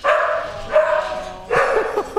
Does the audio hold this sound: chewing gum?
no